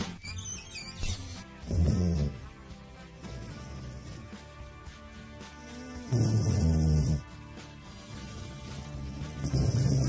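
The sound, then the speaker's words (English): Studio cat Boog snoring: three low, rumbling snores roughly four seconds apart, each lasting about a second, with quieter breathing noise in between and no talking. “And I don't know if you can hear this. Studio Cat Boog is snoring.”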